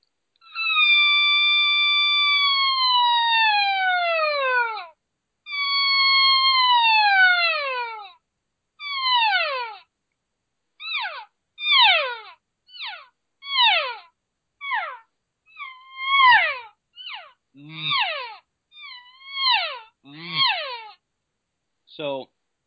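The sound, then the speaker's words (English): Imitated estrus cow calls: two long, high, wavering whines that slide downward, then shorter and shorter falling notes ending in quick voice cow mews made with a G sound in the throat, some in doubled pairs, with no talking. “Some doubles there, right, where you're doing that wavy kind of estrus cow call, and then a voice mew where you're just using the G sound in your throat to actually add another vibration range to that call.”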